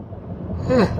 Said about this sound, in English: Excuse me for all the yawning. I mentioned it's late. Or early, however you want to call it.